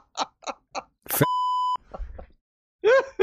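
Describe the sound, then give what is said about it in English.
A single loud, steady censor bleep tone cuts in for about half a second, flat and unwavering, with short bursts of speech just before and after it. “Yeah, so you can't use that word.”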